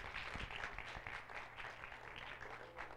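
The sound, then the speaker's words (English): A large church audience, standing during a worship service, claps steadily and loudly throughout, with scattered cheers and shouts of praise to the Lord rising over the dense, continuous applause. “Can we all stand together and just give the Lord a hand clap and a shout for the truth and power and might of His Word?”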